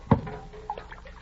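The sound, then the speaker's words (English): A dipper clunks against a bucket of cool spring water, then brief, soft trickling and dripping follow as water is scooped and poured for a drink, fairly quiet, with no talking. “There's a bucket of cool spring water right there. Help yourself.”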